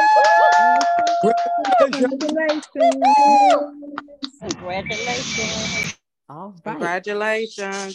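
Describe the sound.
A brief burst of applause congratulating a participant, roughly a second and a half of dense clapping, set between stretches of high, sing-song voices and chirpy tonal sounds.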